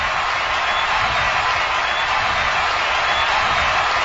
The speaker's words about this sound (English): Springer to left. Going back, and that one is gone. Wow. I don't know about you, but this escalated pretty quick. And listen to the crowd here at Coors Field.